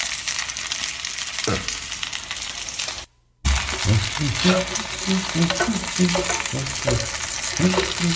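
Chicken sizzles steadily in a hot pan, a dense crackling hiss broken by a brief pause, then the frying resumes with clinking and scraping as pieces are stirred and turned.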